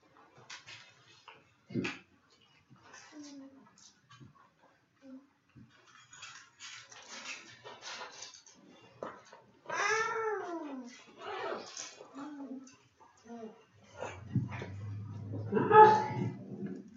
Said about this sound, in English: It's a dog, but I don't know, man.